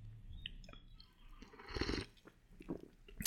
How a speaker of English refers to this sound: And I am envious of my future self because I'm about to have a sip.